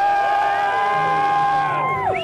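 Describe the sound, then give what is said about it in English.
A loud crowd of Dolphins fans cheering and whooping, a sustained roar of many voices with high shouts rising over it, then swelling briefly before tapering at the end. “Let's see where all the Dolphins fans are for Joe to see.”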